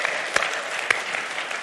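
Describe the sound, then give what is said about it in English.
A church audience bursts into sustained applause for God, a dense wash of many hands clapping steadily with a couple of sharper claps standing out, no voices over it. “Somebody ought to give God an applause right now.”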